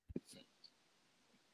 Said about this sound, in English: Hang on. I'm about to burp.